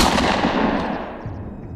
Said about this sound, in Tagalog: Isang malakas na tunog ng baril ang umalingaungaw sa kabahayan.